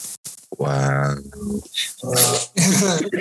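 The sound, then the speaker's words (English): A person imitates the snore of Yoda, a dog, with a rough, droning growl followed by breathy, snorting exhales, loud and rhythmic over about three seconds. “And so Yoda snoring in the back. Can you hear him?”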